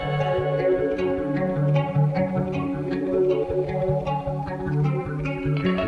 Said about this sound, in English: It's just like my favorite song, and I really like it a lot.